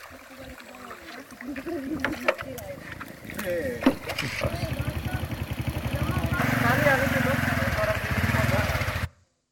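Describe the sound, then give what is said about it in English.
A motorbike engine being ridden on a narrow jungle track, its throbbing putter building and growing louder over several seconds before cutting off abruptly, with someone talking in the opening moments. “We're on motorbikes here, and the track is getting narrower and narrower, go further into the jungle here, up to some other village somewhere.”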